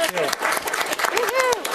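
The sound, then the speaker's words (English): A round of applause from a group at a Port Commission meeting, with dense, steady clapping filling the whole moment, and some voices rising over it with a few sliding vocal calls. “I don't know if it would be inappropriate to give them a round of applause.”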